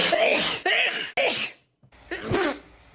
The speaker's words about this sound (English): Been watching your sneezing compilation video.